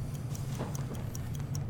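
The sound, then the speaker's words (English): A game timer ticks steadily, with quick, evenly spaced sharp clicks about five per second over a low constant hum. No one speaks. “We have the timer.”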